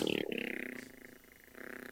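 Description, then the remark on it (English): A voice imitates a lawnmower sputtering and failing to start, a low rumbling, pulsing drone that falters and restarts over about two seconds. “That's what that lawnmower sounds like.”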